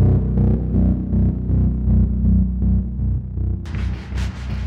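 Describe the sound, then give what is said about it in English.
A magic blade hums inside a plane with a deep, throbbing drone that swells and pulses steadily, loud, before a brighter, hissing surge breaks in near the end. “Inside a plane, Pandai hears his magic blade hum.”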